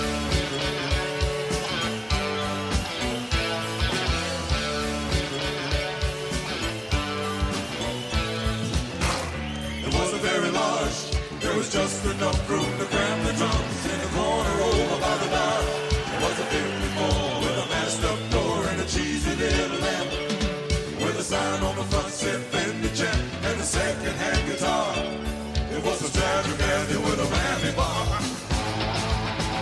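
A full band plays a rock song at a steady, loud level throughout, with driving drums, bass and guitars filling the mix; the sound thickens after the first several seconds.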